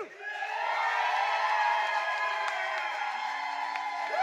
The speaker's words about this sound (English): And all you have to do if you want the negative to win is cheer louder than the first cheer. So, we're going again.